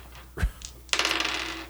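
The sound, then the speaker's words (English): A single dull knock, then dice clatter and rattle rapidly across a hard tabletop for nearly a second, close and fairly loud, with no voices. “I have a box of dice right there.”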